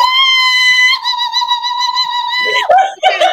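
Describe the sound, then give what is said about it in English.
A single voice imitates a cheering crowd with a loud, sustained high-pitched whoop held for over two seconds, then breaks into a couple of short excited yelps. “This is me cheering. I am the audience cheering.”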